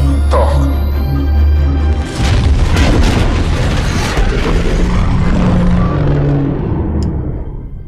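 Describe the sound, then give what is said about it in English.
A Klingon ship explosion as the neck of the ship is blown up: a low rumbling drone, then a loud roaring blast with crackling debris that slowly dies away over several seconds. “Basically, the sort of neck of the Klingon ship got blown up.”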